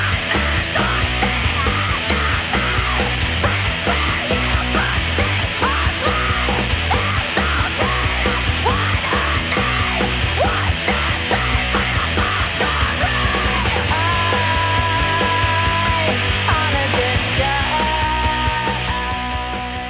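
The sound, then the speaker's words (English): Blood-curdling screaming vocals from the lead singer of an alternative grunge rock band from Long Beach, California, ride over loud, driving band music, intense, with long sustained shrieks running almost nonstop through the whole stretch. “And of course, blood-curdling screams.”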